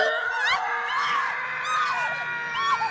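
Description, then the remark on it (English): A bride and her fiancé, figures in a haunted house ride, scream in high, wavering wails that overlap and rise and fall for several seconds, layered over a dense, eerie background ambience. No speech. “The couple appear, scream.”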